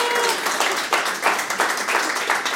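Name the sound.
round of applause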